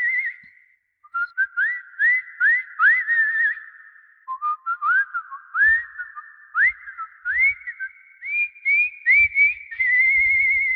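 Someone whistles a lilting melody alone, a string of rising, swooping notes in a steady rhythm with brief pauses between phrases, the pitch stepping up and down across the tune.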